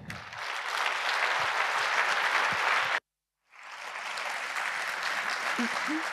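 An audience claps loudly for a PhD student speaker about to present her research, in a dense, steady wash of applause, which cuts off abruptly for half a second, then swells back up and continues evenly to the end.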